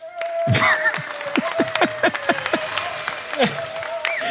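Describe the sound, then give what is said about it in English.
An audience cheering sound effect: a burst of clapping and crowd cheers with a string of quick, falling whistle-like calls, lively and steady for a few seconds. “Ooh, the audience agreed with that.”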